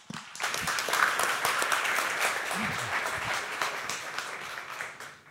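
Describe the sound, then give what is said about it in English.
Sustained applause from a large audience at The Interval, a Long Now event, welcoming Long Now co-founder Stuart Brand: a dense wash of many hands clapping at once, fairly loud and steady for several seconds, with a brief murmur of voices underneath. “So please give a big round of applause for Long Now co-founder Stuart Brand”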